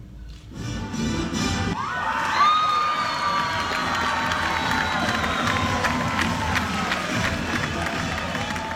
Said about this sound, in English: You can hear an excited crowd there at Briarcrest as Tennessee lands a commitment from four-star defensive lineman